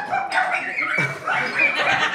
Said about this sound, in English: I can't actually concentrate. I've just got a dog barking at my head.